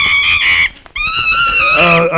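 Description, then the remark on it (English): Royal messenger monkeys chatter in loud, high-pitched screeching calls, two long wavering bursts split by a brief pause, the second rising in urgency toward the end. “Macho, sorry, but Macho does not speak monkey.”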